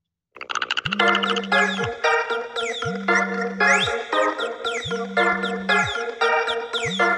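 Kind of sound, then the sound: signal or alarm, phone ringtone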